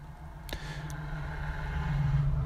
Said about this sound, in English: I'm getting distracted by all the cars. Should have picked a better place to do this.